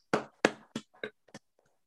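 A guest on a Zoom call claps for themselves five times at a steady, unhurried pace, each sharp clap a little quieter than the last until they trail off. No one speaks.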